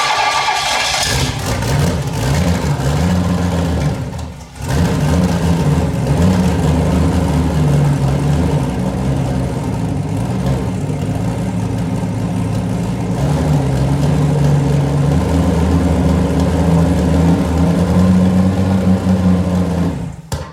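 A custom-built car engine with a welded cast aluminum, redecked cylinder head and stock LS coil packs fires up in one of its first startups. It runs loud, its low rumble rising and falling with repeated revs, briefly cutting out early on before roaring back. No voices.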